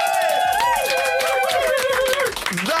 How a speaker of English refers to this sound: Let's do it again. All right, I'll get everyone in the room to clap as well.